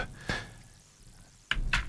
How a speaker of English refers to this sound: Okay. Can you hear me typing? It's all good on live radio, this, isn't it?